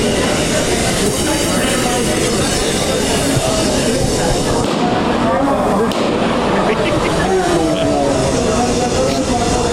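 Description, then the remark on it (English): A loud, steady hiss of nitrous oxide tanks filling hundreds of balloons at Nitrous Alley outside a concert runs without pause throughout, mixed with the murmur of a crowd talking underneath. “Here, listen to the balloons being filled.”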